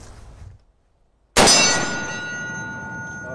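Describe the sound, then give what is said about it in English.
A single sharp gunshot cracks after a moment of silence during shooting practice at steel, followed by the bright, sustained metallic ring of a struck steel target that slowly fades over about two seconds. No one speaks. “Shoot the steel twice.”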